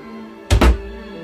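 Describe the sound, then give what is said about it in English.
An unlocked door opens with a quick double thunk, two solid knocks of the latch and frame in rapid succession, fairly loud, with no voices. “Janet, can I come in? The door's not locked!”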